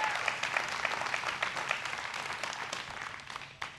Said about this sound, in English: Y'all give them a big hand clap as they come up here.